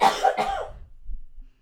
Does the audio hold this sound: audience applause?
no